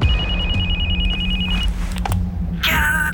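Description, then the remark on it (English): A cell phone rings inside a car during a silent drive, a fast, trilling electronic chirp, clear over a low engine-like hum. It cuts off after about a second and a half, then a harsh burst of noise follows. “Suddenly, Pamela's cell phone breaks the silence.”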